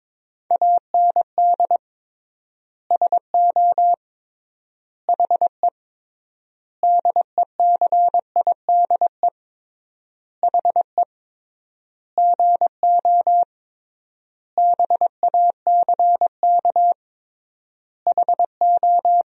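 Steady mid-pitched Morse code tones at 22 words per minute beep out in quick dots and dashes, sending sentences from the top 500 words with triple word spacing, grouped into words separated by long silent gaps, clean and fairly loud with no voices.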